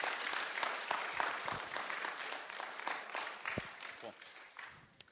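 An audience applauds the volunteer board and staff of an organization, many hands clapping in a dense, sustained patter that stays fairly even in loudness before easing slightly toward the end.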